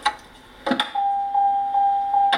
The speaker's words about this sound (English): Track one, your husband opening the car door for you like a perfect gentleman.